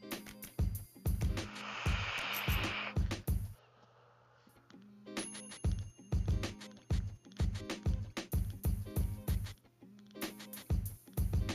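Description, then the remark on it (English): Steady run of sharp tapping on a vape device, quick hard clicks in irregular bursts, briefly joined by a hissy rush early on, then a short lull before the tapping resumes. No talking. “For those questioning that noise, if they're hearing it, I am tapping on my vape because, well, I'm waiting on this stupid piece of crap to fucking work.”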